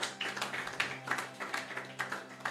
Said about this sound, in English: Hallelujah. Praise the Lord. Give the Lord a mighty clap of offering.